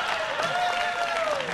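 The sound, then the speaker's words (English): Steady, dense applause from an audience clapping for Jeopardy game contestants, a sustained wash of many hands clapping, with a thin high whistle-like tone running through it. “Y'all give your Jeopardy contestants a hand clap this morning.”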